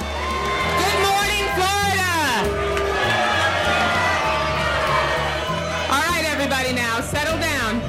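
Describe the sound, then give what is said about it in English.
A crowd boos loudly and steadily at a breakfast for Florida's state delegation, booing Florida representative Debbie Wasserman Schultz, with individual voices shouting and jeering over the dense roar for the full stretch; the noise never drops away. “The Florida representative was even booed during a breakfast for her state's delegation.”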